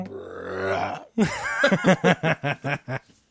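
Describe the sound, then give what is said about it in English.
A long, deep, deliberate belch rumbles into the microphone for about a second, followed right after by a run of rhythmic, breathy bursts of laughter that trail off. “Should I just belch into the microphone?”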